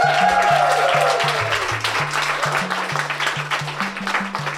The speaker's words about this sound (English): We have 3 stories left to tell. Can we hear another clap for the first 3 people?